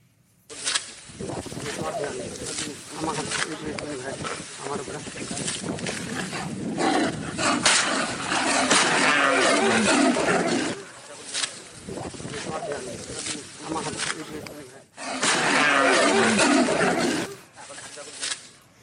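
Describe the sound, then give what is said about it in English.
A tiger, crouched in the grass about 10 feet from an elephant, roars and snarls loudly in several long, rough bursts separated by brief pauses, with human voices mixed into the commotion. “As big and ferocious as that tiger was, did any of you see him sitting down in the grass?”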